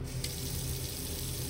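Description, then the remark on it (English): A bathroom faucet runs steadily into a sink, a constant rushing hiss of water with no pauses or voices. “I turn on the light, run the faucet, and look at myself in the mirror, slack-jawed and exhausted.”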